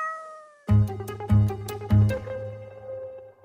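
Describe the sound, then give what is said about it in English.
A cat meows three times in quick, evenly spaced succession, loud, each call rich and drawn-out, with a faint tone lingering just before the first. “Ah, yes, my cat did sit in the window on March 3rd, 2014.”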